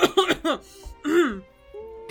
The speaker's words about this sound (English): Just coughs.